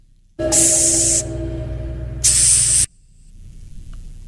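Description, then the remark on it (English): A hissing cockroach lets out two loud, breathy hisses, the first longer and the second a short burst after a brief pause, with no one talking. “That's a hissing cockroach.”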